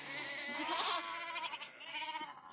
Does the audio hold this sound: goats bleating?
yes